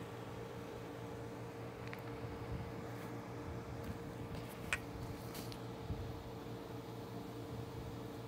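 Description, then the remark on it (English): A steady, continuous telephone dial tone, played as a test, hums through the whole stretch against a low background noise, with a few faint clicks scattered along the way and no one speaking. “Let's hear our dial tone on there.”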